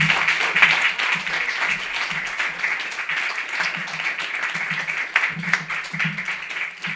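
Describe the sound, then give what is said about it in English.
An audience at a poetry open mic applauds a poet after his poem, steadily for several seconds, a dense, even wash of many hands clapping at once, with faint voices murmuring or cheering underneath. “Let's give him one more round of applause for that.”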